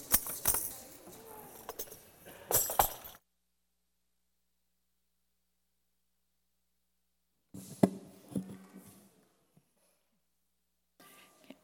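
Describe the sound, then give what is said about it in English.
Keys jangle in bright, metallic bursts as a church audience shakes them as makeshift instruments: first a sustained rattling for a few seconds, then silence, then another shaking flurry and a brief final jingle, with the clinks scattered as if many hands join in. “I appreciate the makeshift instruments with keys and other things out in the congregation.”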